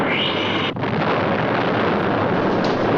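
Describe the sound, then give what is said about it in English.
A big explosion sound effect as a loud, sustained roaring rumble that fills the whole clip, dense and noisy, with a brief momentary drop near the start before the blast continues. “And there we go. Big old explosion.”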